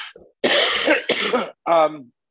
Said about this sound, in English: You'll excuse me, I'm just coughing a little bit.